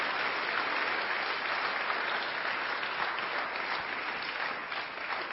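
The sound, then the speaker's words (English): A church audience at WFR gives a hand clap of encouragement for the Lord and the staff, steady, dense hand clapping that holds at an even loudness throughout, many hands blending into a continuous wash with no voices standing out. “Give the Lord, our staff, and y'all a hand clap of encouragement.”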